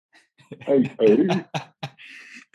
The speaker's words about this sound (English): And coughing into the mic right at the end of the show, man.